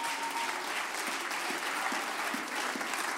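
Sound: audience applauding and clapping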